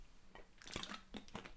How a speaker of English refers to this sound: Hold on, short slurp. It's only water.